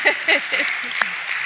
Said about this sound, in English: I'm going to clap too.